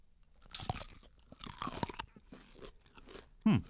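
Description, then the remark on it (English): A close, crisp crunch of biting into a half-sour pickle spear, followed by several wet, crackling chews and a final sharp bite near the end, all recorded right up against the mic. “We're biting into the mic, yeah.”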